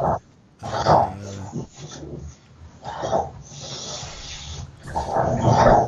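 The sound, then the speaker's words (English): An American bulldog named Fudd, lying on the floor, chews its lips in several bursts, with wet smacking and snuffling mixed with low, rumbling growl-like grunts, fairly loud and alone, pausing briefly between bouts. “He's chewing his lips. That's what he's doing.”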